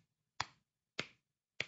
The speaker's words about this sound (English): Like golf clap. Oh, man. It's not a good start.